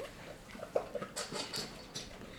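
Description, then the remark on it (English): A female dog eating her whole bowl of food: quiet crunching and clinking bursts in an uneven rhythm, with a few brief sharper ticks, low in level and with no one speaking. “I don't know why my dog decided to eat her whole bowl of food right now”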